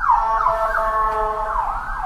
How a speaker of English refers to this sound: Sorry, I heard that ambulance coming.